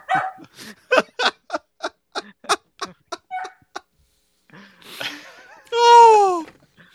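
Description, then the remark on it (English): People imitate barking dogs with a rapid run of a dozen or so short, sharp yaps, then a pause, some rough noise, and a loud drawn-out howling cry to finish. “Bark with me, dogs.”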